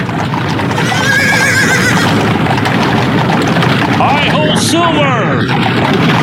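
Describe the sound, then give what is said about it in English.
An old-time horse-drawn stagecoach being ridden rumbles and rattles steadily throughout while a horse lets out a high, wavering neigh early on, then a longer, louder whinny near the end. “So let's go ahead and move to our intermission today, which is riding an old timey stagecoach.”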